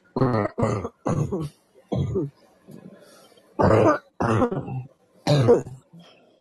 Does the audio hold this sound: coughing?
yes